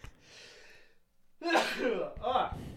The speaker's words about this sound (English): I'm going to sneeze.